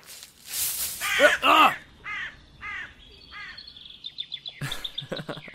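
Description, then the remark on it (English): Crows caw harshly, a loud burst of overlapping calls followed by several spaced single caws, while higher, quicker chirps from smaller birds join in toward the end. “Just crows.”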